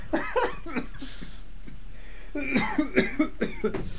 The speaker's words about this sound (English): I got a cough.